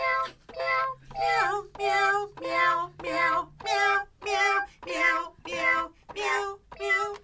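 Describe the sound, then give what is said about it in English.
A toy keyboard plays recorded cat meows as notes, about eleven short meows in a steady rhythm that step up and down in pitch, loud, with no talking. “We got this kitty cat keyboard, and then he can have.”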